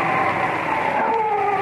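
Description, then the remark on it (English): A dog howls somewhere far down the road, a few minutes before midnight, in one long, drawn-out wail that slowly bends in pitch, sounding mournful with no voices over it. “And then a dog began to howl somewhere far down the road.”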